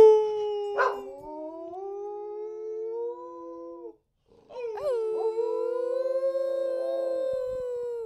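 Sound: dog howling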